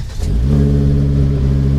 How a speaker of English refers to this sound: It's a 10-year-old Volvo. Still runs just fine. And it's been all over the state.